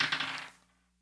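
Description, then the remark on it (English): A quick clatter of dice tumbling and rattling across a surface for about half a second, then settling into quiet. No voices. “Let me roll some dice real quick.”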